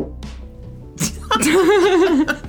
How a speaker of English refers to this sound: You can't fart on pod and ask me to edit that out. No, I didn't. That was the chair.